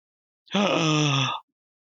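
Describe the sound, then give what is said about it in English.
A single loud vocal exclamation, a voice mimicking a shocked gasp as a drawn-out, voiced 'aah' lasting about a second, with silence before and after. “Insert shocked gasp here.”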